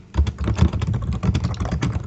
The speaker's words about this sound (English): Whoever's typing, it's really loud, just saying. Oh, sorry. It's not me. It was me.